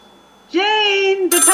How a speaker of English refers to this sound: Jane, the telephone's ringing.